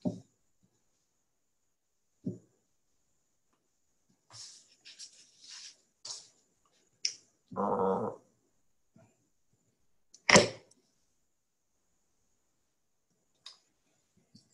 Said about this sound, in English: Noises off as I open up the sample and pour it.